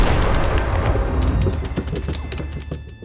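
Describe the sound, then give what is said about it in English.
A heavy, booming thud with a low rumble from upstairs gives way to a quick flurry of sharp scratching and clattering, like claws scrabbling across a floor. It is loud, with no voices. “A loud thud came from upstairs, accompanied by the sound of claws scratching on the floor, like animals were running about.”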